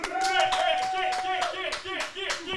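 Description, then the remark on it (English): A burst of hand clapping, several quick irregular claps close to the mic, with a sustained voice-like tone running underneath for most of the few seconds. “So round of applause for almost finalizing a date.”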